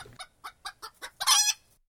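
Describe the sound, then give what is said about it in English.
A chicken clucks: five quick, evenly spaced clucks, then a louder, drawn-out squawk to finish. No voices. “It's an interesting thought experiment, but no one's going to be creating a Tyrannosaurus Rex out of a chicken anytime soon.”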